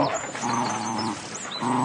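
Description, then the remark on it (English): A spaniel on a carriage step snarls and growls in furious rage, snapping at a black skirt above it, loud, in two sustained raspy bursts separated by a brief dip, with faint high chirps in the background. “Then, in a moment, its eager greeting changed to furious rage, and it snapped at the black skirt above it.”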